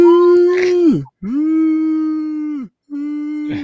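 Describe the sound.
A person mimics a beagle's howl with three long, loud, sustained vocal wails, each holding a steady pitch before dropping off, separated by brief pauses.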